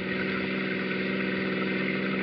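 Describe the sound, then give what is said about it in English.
A car engine hums steadily while driving a man home to the North End, a continuous low drone with a faint tonal whine layered over it, holding an even loudness throughout with no voices. “I was driving him home.”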